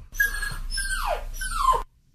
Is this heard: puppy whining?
yes